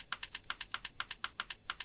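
A soft, synthetic typing notification sound signalling that a chat message is being composed: a quick, even run of about a dozen light clicks in a steady rhythm, clean with no voices.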